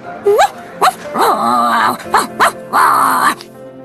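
A dog, Hachiko, whines while pawing, in a series of high, wavering cries: short rising yelps alternating with two longer, drawn-out whimpers, fairly loud, with no talking over them.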